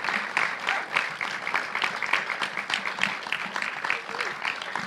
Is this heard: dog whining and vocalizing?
no